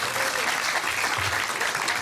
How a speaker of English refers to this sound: a round of applause.